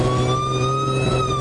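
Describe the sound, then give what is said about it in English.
A police car siren wails loudly and continuously as the police car follows behind a vehicle, chasing it and telling it to pull over, its steady tone gliding slowly in pitch over a low rumbling engine drone, with no voices. “There's a cop car behind me.”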